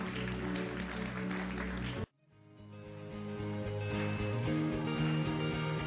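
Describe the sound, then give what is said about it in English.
An audience at Baylife Church applauds God at the close of a sermon. The applause is a dense, steady burst for about two seconds before it cuts off sharply, and soft music with sustained tones rises in its place. “Come on, let's give God a great big applause this morning.”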